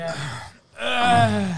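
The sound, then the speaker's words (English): Heavy, labored breathing of a man with asthma: a rough breath out, a brief pause, then a loud wheezing gasp in with a strained, whistling edge. No talking. “You just hear him breathing.”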